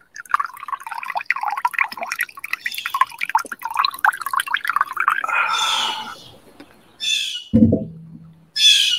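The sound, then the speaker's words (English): Coffee pours from a French press at a spa in a long, warbling gurgle that wavers in pitch, followed by a few short, splashy bursts of liquid and a low glug. “Got to fill up my coffee, my French press.”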